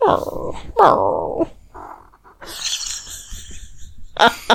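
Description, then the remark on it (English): A cat named Maggie gives two short, falling meows with a murmuring, grumbly edge, then a softer brief murr, followed by a stretch of rustling noise and a final scuffling burst. “And if you can tell, Maggie does not have the volume, yelping meow that Max does. She has a bunch of concerned murs.”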